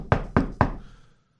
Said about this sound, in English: Who is knocking on the door? There's no shadow. Is somebody running up and running away?